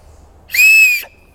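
A single loud, piercing whistle from an empty acorn cup held between the bent thumbs, which cover the top of the cup and leave a small V-shaped opening just below the nails, holding one shrill high pitch for about half a second before cutting off abruptly, with no talking.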